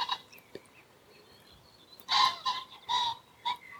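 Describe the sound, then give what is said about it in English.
Pheasants calling back and forth, a series of harsh, loud squawking bursts with strong harmonic bands, coming in uneven clusters after a quieter stretch. “I think the pheasants are shouting at each other that there's a muntjac in the field.”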